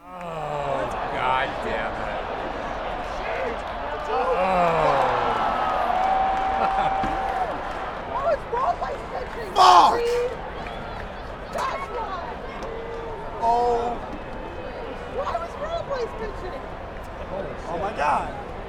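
Dense baseball stadium crowd noise and steady babble fill the scene, while drawn-out, anguished cries from one person rise and fall above the din after Michael Franco's eighth-inning home run off Addison Reed, with a sharp burst of noise about halfway through.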